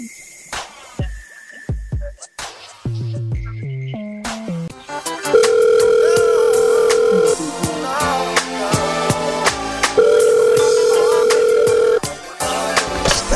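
A rapid series of keypad dialing beeps at varying pitches, followed by two long, steady ringback tones separated by a pause, over a faint background hum; no one speaks.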